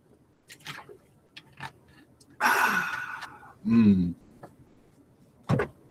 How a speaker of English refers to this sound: So let me take a drink here. Hold on. See if you can guess what I'm drinking.